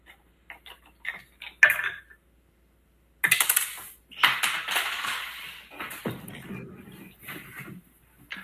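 Two ten-sided dice clatter and tumble across a hard surface, rolled together for a sanity check with disadvantage: a few quick clicks followed by a longer rattling roll that skitters and settles, fairly clear with no talking.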